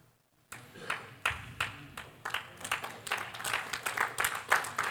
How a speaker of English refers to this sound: So you're like, is it okay to clap like that? Because I don't know if I even like that,